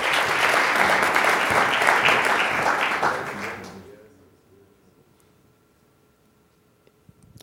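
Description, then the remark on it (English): A crowd bursts into loud, dense applause for a panel of speakers that holds steady for a few seconds, then fades out, leaving quiet with a couple of faint clicks at the end. “Can we give our panelists a good hand clap?”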